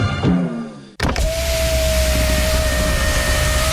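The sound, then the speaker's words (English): A car's power window motor whirs steadily as the window goes up, with a sustained mechanical hum and faint whine, preceded by a brief lower grinding start. No voices are present. “A car window going up.”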